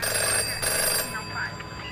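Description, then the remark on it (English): Murder victim Lambert's home telephone rings with a bright, steady electronic trill, fairly loud, sustained through the whole two seconds against a dense, busy background; the caller is business partner Stephen Crane, and police answer. “As Lambert's home phone rang, the police answered.”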